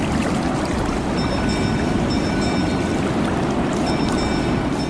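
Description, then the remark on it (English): Outdoor ambience at the historic Chatham Dockyard in Kent, with its massive dry docks: a steady, loud low rumble and wash of noise, with faint high whistling tones drifting in and out. No one speaks. “I'm at the Chatham Dockyard in Kent, which for 414 years provided over 500 ships for the Royal Navy.”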